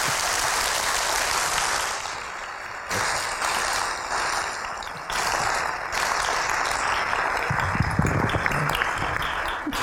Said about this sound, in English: But first, a round of applause for a fantastic panel tonight.